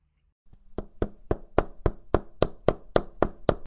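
A hammer strikes about a dozen times in a quick, steady rhythm, each sharp metallic blow ringing briefly. The hits are fairly loud, with no talking.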